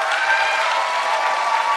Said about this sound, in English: Once again, huge thanks to our audio engineer, Morgan Clark, came across four fucking time zones to help us out today. Big round of applause for Morgan.